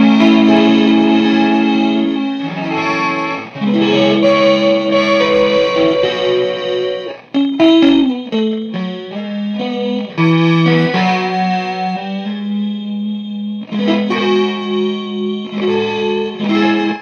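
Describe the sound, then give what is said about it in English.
Guitar run through an echo delay pedal, with sustained, layered notes smearing into one another in a loud, continuous wash that briefly drops out twice before swelling back in. “Yeah, I mean, my Echo system does this.”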